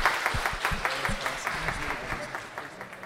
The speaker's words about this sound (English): So if you join me in giving Peter Coonan a round of applause.